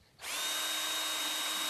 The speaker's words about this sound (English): And so somewhere in high school, I remember the battery-operated drill that was actually 18 volt, so it wouldn't wear out.